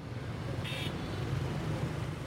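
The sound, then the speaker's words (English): Steady city traffic in Hanoi, Vietnam rumbles throughout, a continuous wash of motor vehicle noise heard on the way to a hotel, with a brief high-pitched chirp near the start and no voices. “Now, I'm on the way to the hotel. The motor cars in the city are many.”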